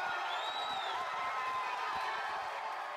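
A crowd gives another round of applause and cheers in a steady, loud wash of clapping, with a few high whistles and whoops rising above the noise for the full three seconds.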